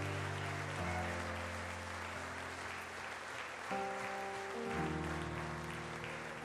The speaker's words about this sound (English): You ought to get excited about that. Can you give Jesus a hand clap of praise?